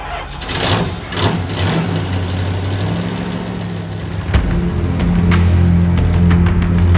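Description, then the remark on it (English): A truck engine starts up with a rattling clatter, settles into a steady rumbling idle, then revs louder and pulls away, the droning hum rising as it drives off. “I walked back to the truck of death. And I headed back to the madhouse.”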